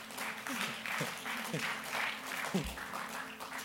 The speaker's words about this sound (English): Give the Lord a mighty clap.